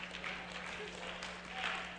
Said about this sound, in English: That's a half-hearted clap.